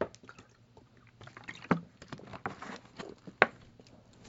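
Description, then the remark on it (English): Someone takes a drink of water: soft sloshing and swallowing sounds with two sharper clicks or gulps standing out, and no talking. “So, excuse me, water break.”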